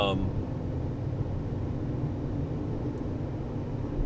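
A long line of trucks, which avoid crossing a bridge together and stop all traffic, rolls past on a road with a steady, heavy, loud engine rumble, constant low-pitched road noise and no pauses between vehicles.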